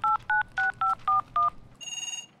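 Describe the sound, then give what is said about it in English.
Six quick, evenly spaced touch-tone beeps of a phone being dialed, followed by a steady electronic ringing tone, clear with no voices. “Oh, it's ringing.”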